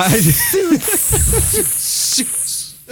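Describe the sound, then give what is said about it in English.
A loud, steady snake hiss runs unbroken for the whole stretch, sharp, with a voice murmuring in choppy bursts underneath it. “The snake was saying your name.”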